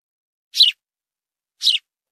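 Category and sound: bird, sparrow chirping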